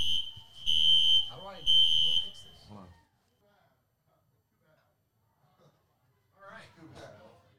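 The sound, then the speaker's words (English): A fire alarm blares during a fire drill in two loud, high-pitched pulses of about a second each, overlapping people talking, then quiet before more voices return. “Fire drill mid-podcast?”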